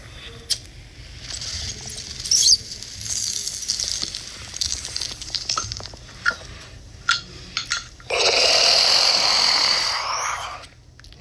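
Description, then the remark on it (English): Scattered light clicks and clinks, then a sustained rough bubbling gurgle of a bong as a hit is taken, lasting a couple of seconds, loud and steady before it cuts off. No talking is heard. “Now that's a fucking bong hit.”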